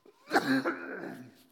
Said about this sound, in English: Excuse me, I shouldn't cough that way.